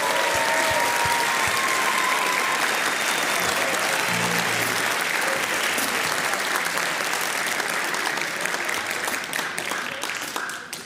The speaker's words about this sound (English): Thank you so much for that. Let's give all of those students a huge round of applause one more time.